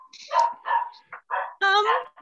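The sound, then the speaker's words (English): A dog barks in a quick series of sharp, yappy bursts, about five or six in a couple of seconds, moderately loud, with no talking over it. “And there's the dog, by the way, too.”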